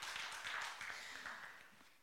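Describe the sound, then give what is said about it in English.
A crowd applauding, many hands clapping together in a dense, steady wash of sound that stays fairly loud and continuous throughout. “This word, please clap for that actually, yes.”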